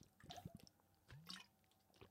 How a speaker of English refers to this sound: I'm going to take another drink of water, and I'll be right back.